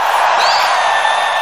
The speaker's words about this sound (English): You deserve every inch of that applause